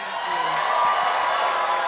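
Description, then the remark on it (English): A crowd at a live show at The Bell House Theater applauds steadily, a dense wash of clapping with some cheering mixed in, at a fairly loud, even level throughout. “Let's give a round of applause for Cam the intern.”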